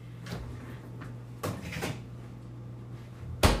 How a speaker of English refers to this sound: First things first, I'm throwing the ice in the margarita shaker, because no one wants a fucking hot margarita.